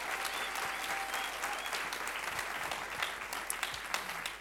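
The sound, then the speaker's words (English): Steady audience applause for panelists as they come to the front, a dense wash of many hands clapping at an even, sustained loudness with no pauses and no voices standing out. “Let's give them a round of applause as they come to the front.”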